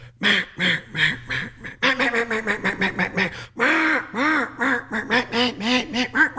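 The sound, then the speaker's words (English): A duck call, air entering its barrel and passing to the reed, blown in a long run of loud, raspy quacks, some clipped and rapid, others drawn out and descending, with no talking over it. The call imitates a duck's quack. “where that air enters the call in that barrel and to that reed”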